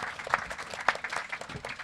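A small group applauds to welcome a guest who has just arrived: dense, irregular clapping with a few sharper claps standing out, fairly quiet and lasting under two seconds, with no one speaking.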